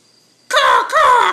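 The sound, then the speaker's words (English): A person's voice imitates a raven, giving two loud, harsh, croaking caws back to back after a moment of quiet. “So I hope you appreciated my Raven call for you.”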